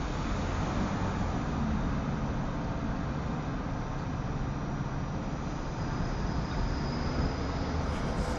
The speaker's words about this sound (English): They're pretty constant, along with the trucks and cars passing by.